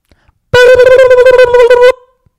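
A loud buzzer sound effect: a single harsh, mid-pitched electronic buzz rich in overtones, rapidly pulsing for about a second and a half before cutting off abruptly, with no talking over it.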